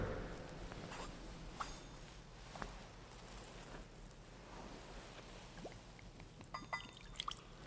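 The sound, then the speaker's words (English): Water trickles and splashes gently as it is poured into wine in a chalice, a soft continuous pour with scattered drips and a few brighter clinks near the end, with no talking. “By the mingling of this water and wine, become partakers of his divinity.”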